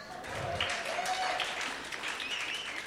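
An audience claps steadily for a few seconds, a dense, even wash of many hands with a few faint voices and whoops mixed in.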